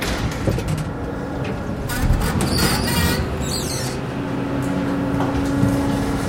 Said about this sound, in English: Doors opening. Lift going down.